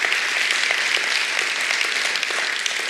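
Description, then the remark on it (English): An audience applauds steadily for a person invited up to be baptized, a dense wash of many hands clapping at once with no pauses, fairly loud, filling the whole stretch without any voices. “We can give him a round of applause.”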